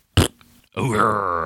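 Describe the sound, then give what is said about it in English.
A brief sharp burst, then a long, loud, croaking burp from a gassy person that rumbles on for nearly a second, with no talking. “I was gassy. I wasn't scowling.”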